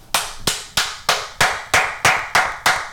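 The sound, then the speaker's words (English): Nine sharp hand claps in a steady, even rhythm, each a crisp bright smack with a short ringing tail, fairly loud and with no voices over them. “What the fuck is the clap for?”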